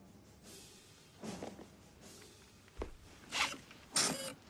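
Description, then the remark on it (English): A Nike Mag self-lacing sneaker's power laces tighten in several short, zipper-like whirring bursts, fairly quiet, with brief pauses between pulls and no talking. “Power laces, all right.”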